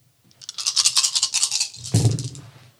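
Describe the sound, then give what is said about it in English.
A handful of eight dice, rolled for a bite attack in a tabletop game, rattles and clatters in a dense burst of bright clicks for about a second and a half, then a heavier thud as they land and settle, with no voices. “It's going to do a bite. So that is 8 dice.”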